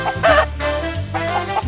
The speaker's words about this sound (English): Of course, it was the sound of a chicken.